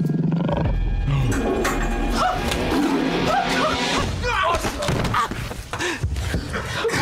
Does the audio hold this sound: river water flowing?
no